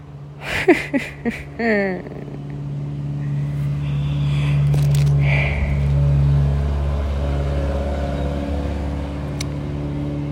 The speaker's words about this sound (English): I'm just trying to record over all this traffic.